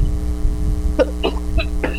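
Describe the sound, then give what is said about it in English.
A quick run of four short, sharp sneezes, each a brief breathy burst about a quarter-second apart, over a steady low electrical hum. “Bless you.”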